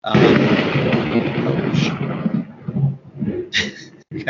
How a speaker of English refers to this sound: And with a strike of thunder, that was a sign that Sterling is going to win player of the tournament, perhaps.